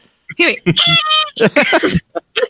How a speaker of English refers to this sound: It's like a rubber chicken. That's one of those little squeaky confetti things.